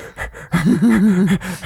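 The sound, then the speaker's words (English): A person imitates a creature called an echo breathing hard behind its mirrored faceplate: a few quick, airy huffs, then a longer stretch of voiced, wavering panting that rises and falls in pitch, fairly loud. “Yeah, it's really like breathing hard, though.”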